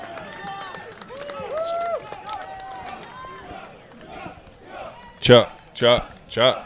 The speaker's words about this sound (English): Chuck. You hear it, folks? Chuck. This is a Chuck favorite crowd here tonight.